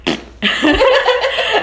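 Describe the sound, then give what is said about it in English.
A woman blows a wet, buzzing raspberry with her mouth, imitating a fart as she does to get children's attention: a short burst, a brief pause, then a longer sputtering blast, loud. “She was making fart noises at my kids, and it was amazing.”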